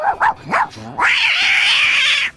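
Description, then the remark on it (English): A human voice mimics a dog and cat fight as part of a stand-up comedy routine: a few quick yips and growly barks, then a long, loud, wavering yowl like a screeching cat, alone. “And within this routine, I did like a dog and cat fight.”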